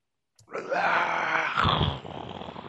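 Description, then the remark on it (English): A person voices a monster's growl, one loud, rough, drawn-out roar lasting about two seconds. It turns harsher and more guttural partway through, then eases into a lower rumbling tail. “It growls and roars and screams.”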